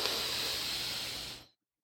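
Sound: deep inhale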